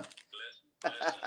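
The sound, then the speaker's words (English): A single sneeze: a short breathy intake rising into a tonal "ah," a brief pause, then a loud, explosive burst of noise that trails off. “Bless you.”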